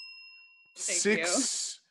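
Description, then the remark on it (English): A single bright bell ding rings out with a clear, sustained tone, then a loud, breathy voice cuts in over it and carries on to the end. “I'm going to give you a bell.”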